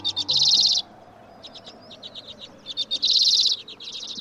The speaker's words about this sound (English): The tiny common redpoll, one of the smallest members of the finch family, weighs only as much as 4 pennies. Yet it survives the cold and darkness of winter in the far north.